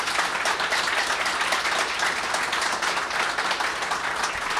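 A crowd applauds the guests steadily and loudly throughout, a dense wash of many hands clapping at once with no break or fade.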